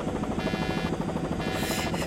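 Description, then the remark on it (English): A helicopter runs steadily, its engine whining over the rapid, rhythmic chop of the rotor blades, loud and continuous with no voices. “But, well, we've got a working helicopter now.”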